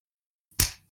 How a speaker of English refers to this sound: Just so that way I know where my mark is. Yes, I've been clapping during the podcast to find out where I need to edit. I was wondering what that noise was.